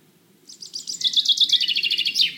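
dawn chorus birdsong

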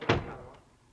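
door being closed

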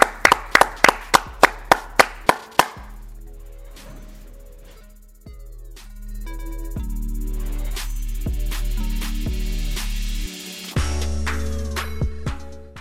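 hands clapping

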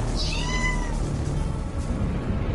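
cat meowing

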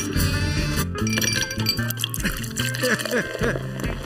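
glasses clinking

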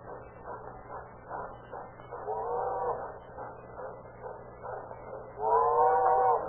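approaching train

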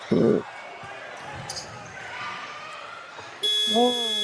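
basketball end-of-half buzzer

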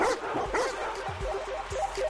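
dogs barking

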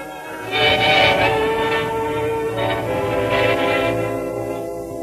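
train departing

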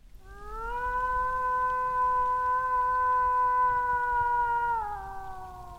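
howl

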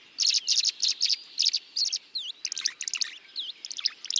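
tree swallow calls

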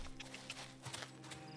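horse hooves clip-clopping

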